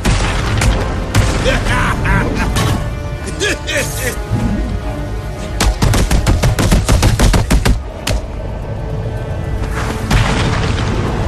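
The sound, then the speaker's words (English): Video game brawling in Arkham City from the Arkham series: a rapid, irregular barrage of loud, meaty punch impacts as hits connect and heavy booming thuds as enemies are knocked out, piling up over a dense rumbling bed with voices mixed in. “It's the combination of those meaty slaps when you connect and the when you knock an enemy out.”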